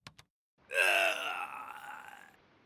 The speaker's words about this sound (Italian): Un uomo che muore. Ogni podcast di True Crime che si rispetti deve far sentire un uomo che muore.